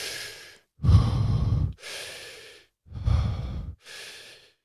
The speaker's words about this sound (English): So you're breathing in 100%, try it as deeply as possible from the belly, sort of belly, chest, head kind of thing. So fully in, letting go, fully in, letting go.